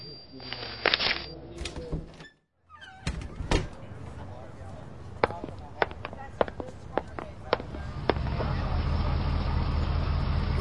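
A car pulls up nearby, with a series of sharp thunks and clunks. A steady engine rumble settles in toward the end.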